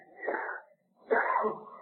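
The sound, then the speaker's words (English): Two sneezes in quick succession, each a loud, breathy burst lasting under a second, separated by a brief silence, with no talking around them. “God bless you.”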